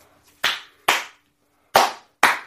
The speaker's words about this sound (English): Slow clap.